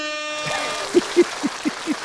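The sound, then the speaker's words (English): A brief, blaring air horn tone with a rich buzzy stack of harmonics, then a quick run of five short, lower honking bursts in a steady rhythm. “I gotta get to my air horn.”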